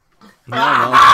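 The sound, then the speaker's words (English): A brief faint grunt, then a loud, rough, sustained snarl, like dogs fighting and growling at each other, with no talking. “There's four dogs in his college dorm. It's like he's fighting them.”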